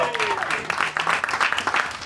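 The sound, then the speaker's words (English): An audience claps steadily for the round one competitors called back to the stage, a dense patter of many hands at a fairly loud, even level, with a faint tone gliding downward at the start and murmured voices underneath. “Give it up for your round one competitors. Come on, you can do better than that.”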